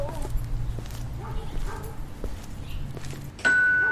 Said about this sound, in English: Hey, first off, man, don't be ringing my doorbell like that, man. Come on in the crib, man.